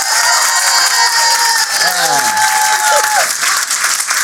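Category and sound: crowd, audience applause and cheering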